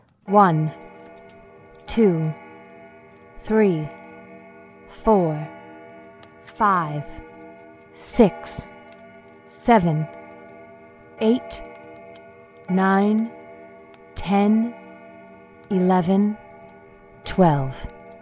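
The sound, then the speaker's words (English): A grandfather clock in a home chimes twelve slow, evenly spaced strikes, each ringing tone overlapping the last, with a faint steady ticking underneath. “Right as their eyes finally closed, the grandfather clock in their home began to chime.”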